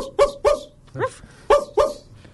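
A dog barks five times in short, sharp, loud yaps, coming in uneven pairs with a brief pause in the middle and no talking.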